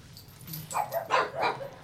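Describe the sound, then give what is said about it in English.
A dog lets out three quick, high barks in close succession at thunder during a storm, moderately loud against a low background rumble, with no one talking. “Are we going to bark at the thunder?”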